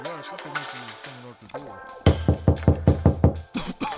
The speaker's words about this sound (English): Well, I think I hear somebody at the door. So let's see who it is.